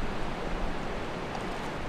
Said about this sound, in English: So I love it with the cliffs there, the rocks. It just sort of magnifies the sound of the river, the roar of the sluice pool.